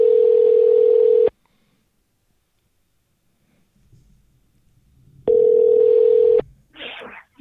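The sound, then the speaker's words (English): An outgoing phone call rings: a loud, steady ringback tone lasting about a second, a long silent pause, then a second identical ring, followed by faint rustling as the call is picked up. “My God, he picked up the phone.”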